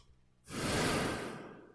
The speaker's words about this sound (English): I'm going to do a heavy breathe into it.